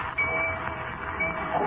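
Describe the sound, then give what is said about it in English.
Steady rumbling ambience of the railroad terminal in Metropolis with a constant mechanical hum and hiss, broken by a couple of thin, high squeals like brakes or whistles. No voices. “Meanwhile, danger threatens Lois at the railroad terminal in Metropolis.”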